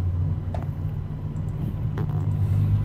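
A steady low rumble of road traffic, cars droning past the site of a plane crash, with a couple of faint brief knocks, no voices.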